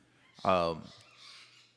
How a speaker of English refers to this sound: Hi, birds. Bird fight.